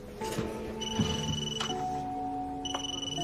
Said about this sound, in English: Gabriella receives a phone call from her mother. And I'm going to play that phone call for you right now.